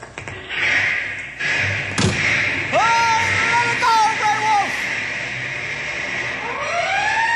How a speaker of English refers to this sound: We take fire engine plenty quick. It got blankets and everything we need. Yeah. Let's go, boys! Follow us! I'll get the cab door open.